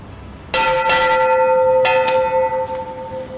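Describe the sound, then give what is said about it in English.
A bell is rung by a person, struck twice, each strike ringing out with a bright metallic clang and long sustained hum that decays slowly; loud, with no voices. “So I went over to the Viopori bell by Vivian Roach to give it a ring.”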